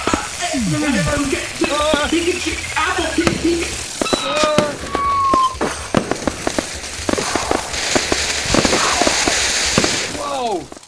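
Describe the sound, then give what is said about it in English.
Fireworks lit all over a house go off in a dense, continuous barrage of sharp pops and crackles, mixed with rising and falling whistles and a steady sizzling hiss throughout. “Yeah, she lit fireworks all over my house, and there's fuses, and they're all in different directions.”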